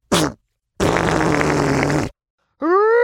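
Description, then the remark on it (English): Three loud cartoon fart sound effects in a row, the fart of a giant, Poof Giant, blowing a tunnel clear: a short blurt, a long rumbling, buzzy blast, then a rising, squeaky toot after a brief pause. No talking. “Get out of the way! I'm going to fart!”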